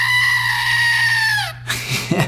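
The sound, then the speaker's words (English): A screaming goat toy lets out one loud, sustained, human-like scream that holds steady and then drops off abruptly, followed by brief scuffling noises over a low electrical hum. “And it makes the goat noise, and I thought that was a perfect representation of frustration, and it makes me laugh.”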